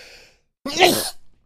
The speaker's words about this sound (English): I'm going to sneeze and edit this out real quick.